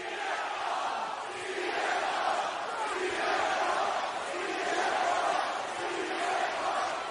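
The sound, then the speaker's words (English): A large wrestling arena crowd cheers and roars continuously, a dense, steady wall of voices that swells slightly at moments, with no clear individual speech. “I mean, the crowd was hype.”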